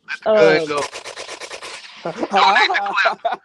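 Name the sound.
gunshots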